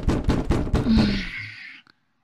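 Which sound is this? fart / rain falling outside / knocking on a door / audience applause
knocking on a door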